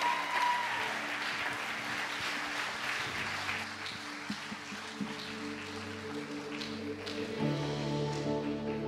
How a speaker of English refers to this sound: Let's give them all a round of applause as we worship this morning.